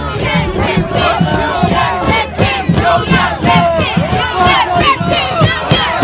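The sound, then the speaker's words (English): A large protest crowd of mostly union workers in Detroit in 2019, during the arrest of Rashida Tlaib, shouts and chants together, many voices overlapping in loud, rhythmic bursts with brief dips between calls, sustained throughout. “That's Detroit Free Press footage of Tlaib, surrounded by mostly black union workers in Detroit and being arrested during a protest in 2019.”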